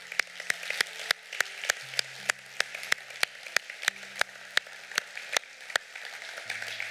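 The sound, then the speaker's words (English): An audience claps steadily as a clap offering to God for the people who accepted Christ, a dense, sustained wave of applause with sharp individual claps standing out, while low held musical notes shift pitch softly underneath. “Let's just give God a big old clap offering right now for the people that accepted Christ.”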